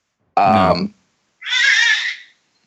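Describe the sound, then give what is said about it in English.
A baby screams in two loud bursts, a short harmonic wail followed after a brief pause by a longer, shriller cry. No one talks over it. “Yes, I agree with whatever baby just screamed.”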